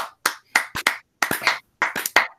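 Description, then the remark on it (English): Scattered hand claps from a small group, a dozen or so sharp bursts in uneven clusters with brief gaps between, fairly loud and with no one talking, applauding the girls' tennis team seniors after they are introduced. “I was waiting for everyone to clap.”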